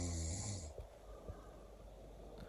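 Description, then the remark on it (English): A man snores loudly in a hostel bunk with a harsh, rattling rasp on one long breath, followed by quieter, rough breathing, snoring that went on for 4 hours. Nobody talks. “This was the guy in the hostel that was snoring.”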